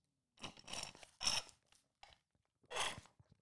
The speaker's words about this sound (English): Another sip of the up and go, hey?